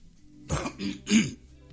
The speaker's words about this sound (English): Excuse me. Let me take a sip of my... I seem to have a little cough.